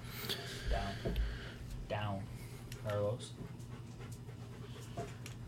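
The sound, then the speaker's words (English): A dog pants in quick, steady breaths, with a few brief whiny vocal tones breaking in over a low background hum. “These dogs just can't get enough.”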